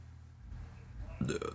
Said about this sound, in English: Burp. I'm so sorry. Guess the real burp.